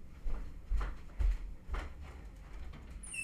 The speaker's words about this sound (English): and then I push the door closed.